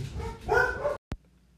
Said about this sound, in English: All right, so yeah, dogs barking all the time. Gotta love this place.